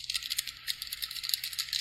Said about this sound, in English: Is that bird cleaning off its beak? It was. Nice. It was doing a little feak.